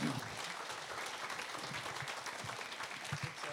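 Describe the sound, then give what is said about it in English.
A gathering claps steadily for a couple after a prayer, a dense, continuous patter of applause that holds at a moderate level throughout, with faint voices mixed in beneath it. “Can we give these guys a round of applause as they...”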